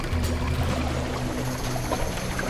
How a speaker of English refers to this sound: Just then, a tidal wave of water flooded the shore.